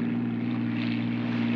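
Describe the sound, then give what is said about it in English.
A smuggler's speedboat engine drones steadily, a loud, constant low hum with a strong buzzing tone and a wash of rushing noise on top. It runs without a break and no one speaks. “I mean, it's a smuggler's boat.”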